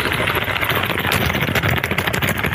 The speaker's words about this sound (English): Grab yourself a bag of nuts. Shake those nuts. Pretty good at that.